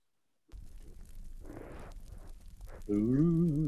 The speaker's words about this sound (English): All right, just let me screen share this fireplace sound generator. 1 second.